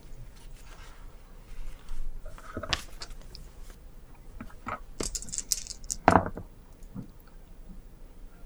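Three six-sided dice clatter across a hard surface in a tabletop role-playing game, in a few sharp, scattered clicks and rattles, fairly quiet, with brief pauses between the bursts and no talking.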